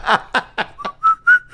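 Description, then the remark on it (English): A person whistles the Old Spice aftershave commercial jingle: a few breathy, sputtering notes, then clear rising whistled tones held briefly, with no talking over it. “Every time I see that chest, I just hear the Old Spice whistle.”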